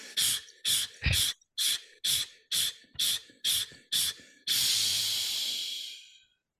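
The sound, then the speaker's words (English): Nine quick, forceful breaths blown out in a steady rhythm during a breathing exercise, each a short airy hiss, followed by one long sustained exhale that slowly fades. No talking. “We're going to just keep blowing until the candles go out.”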